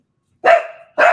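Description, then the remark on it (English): A pet dog barks twice, loud: a sharp bark that trails into a short whine, then a second abrupt bark right after. No voices are heard. “There goes my dog.”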